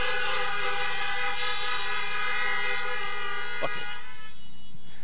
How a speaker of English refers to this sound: We have several police officers in the service, and we, in fact, why don't you all give them a honk that we do appreciate what they're doing?